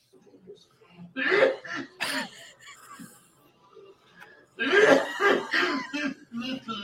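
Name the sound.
man coughing heavily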